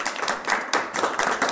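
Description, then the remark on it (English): A crowd claps steadily together for a panel of speakers, a dense, bright patter of many hands that swells and dips slightly over a second and a half, with no voices on top. “So let's have a quick round of applause for our panelists here.”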